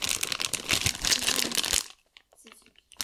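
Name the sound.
candy wrapper crinkling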